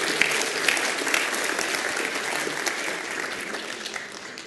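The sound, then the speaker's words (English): An audience applauds steadily for a presenter before his talk starts, a dense wash of overlapping claps that holds at a fairly even level throughout without any voices on top. “let's give him a round of applause before he even starts.”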